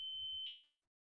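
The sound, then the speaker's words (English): A carbon monoxide alarm sounds a shrill, steady electronic tone for about half a second, then fades out, with a low rumble beneath it; the beep is loud. “got a carbon monoxide alarm. Oh, it just went off.”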